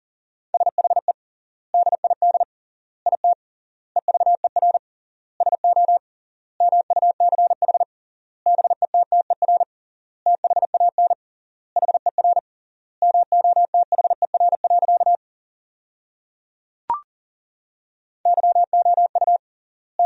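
Fast Morse code at 40 words per minute with triple word spacing, sending sentences built from the top 400 words, in a single steady mid-pitched tone, rapid dits and dahs grouped into words with long pauses between them, and one brief click partway through. No voices.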